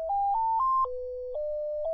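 An ice cream truck jingle plays alone: a simple electronic melody of pure, beeping tones that step upward over three notes, drop lower, then rise slightly, at a steady, moderate volume.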